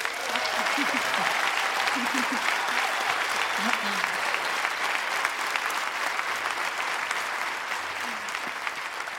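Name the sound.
festival audience applauding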